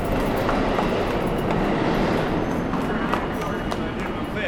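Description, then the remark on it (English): A subway train roars along the rails, a loud, steady rumble with rattling clatter that fills the whole stretch, with indistinct voices buried beneath it. “I'm going to the subway.”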